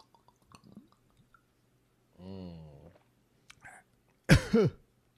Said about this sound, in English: You and that little cough. I don't know why. It's what I do, man.